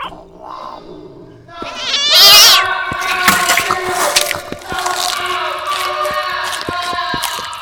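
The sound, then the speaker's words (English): A cat stuck down a deep dark hole lets out a loud, drawn-out meow, then keeps up a rough, wavering cry over a scatter of sharp drips and clicks that continue to the end. “Miss, my cat's stuck down that hole.”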